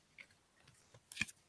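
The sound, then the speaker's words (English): Cards being shuffled for a card game, heard as a few soft, papery clicks followed by a brief, slightly louder riffling burst near the end. Quiet, with no one talking. “I'm trying to shuffle here.”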